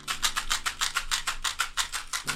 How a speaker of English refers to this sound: I'm going to shake some chewing gums and you're going to hear an advert for some bullshit. Whatever the fuck's been advertised this week, I don't know. Here's the chewing gum shaking pause.